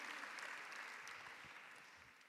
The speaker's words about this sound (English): And I just want to say thank you to every single person who's been involved in Summit. So can we give a huge round of applause to the entire team? I mean, so many students and faculty.